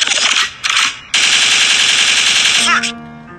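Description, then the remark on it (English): Loud gunfire sound effect in three bursts: two short blasts, then a longer rapid rattling stretch, ending with a brief descending squeal and a low lingering hum. “Record means rewind, a gunshot means forward.”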